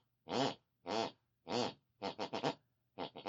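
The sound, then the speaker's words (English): A woman in the room next door, heard through the bedroom wall, snores the tune of music she listened to before bed in a melodic, sing-song pattern: three long, evenly spaced snorts followed by quick clusters of shorter ones, each with a buzzy, pitched tone that rises and falls like a tune. “Each week, we press our ear against the bedroom wall, whatever my mother listened to before she went to bed, picks and pulls on our unconscious mind, and she snores that very tune.”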